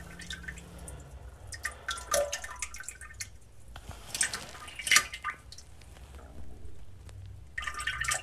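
Water drips and plinks at irregular intervals, some sharper and louder than others, over a low steady hum with a faint wet, squishy texture between drops. No voices.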